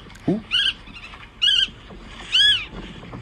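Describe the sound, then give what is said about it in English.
An aggressive nesting bird, repeatedly flying towards a person, gives three sharp, harsh alarm calls, evenly spaced about a second apart, with a brief low vocal sound just before the first call. “Ooh, there are actually some really, really aggressive nesting birds. One little bird is following me for a while now, and it's constantly flying towards me.”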